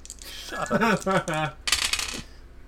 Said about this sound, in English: How many dice are you rolling? It's a long one. Very involved. Oh my god. And one more.